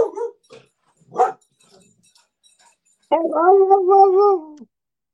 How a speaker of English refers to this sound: Got the dog in back of me barking now. Neighbor's dog.